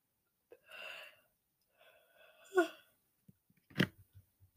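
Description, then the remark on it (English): A drawn-out yawn from a person tired because it is early, breathy and voiced with a sliding pitch, followed by a few soft clicks and a brief sharp exhale at the end; no speech. “I'm yawning because it's so early.”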